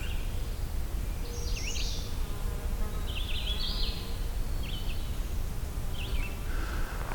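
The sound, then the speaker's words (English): A couple of horseflies drone steadily around the speaker, a low continuous buzzing that fills the whole recording, while a few high bird songs chirp faintly in the background. “Couple horseflies around me, but there's also a couple of dragonflies.”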